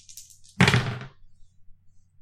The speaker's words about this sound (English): I'm going to go ahead and roll my dice.